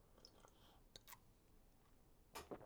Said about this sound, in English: Taking a sip of water, first of the episode.